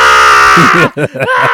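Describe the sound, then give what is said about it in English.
A voice imitates a little boy of about 3 or 4 screaming at a children's haircut place: a loud, shrill, sustained wail that breaks into several choppy, sobbing bursts toward the end, alone. “This kid was screaming. This little boy's probably like 3 or 4, screaming before he even got in the chair.”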